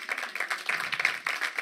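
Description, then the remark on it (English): An audience claps together, a dense, steady patter of many hands at moderate loudness that carries on throughout with no voices over it. “Yeah, you can clap.”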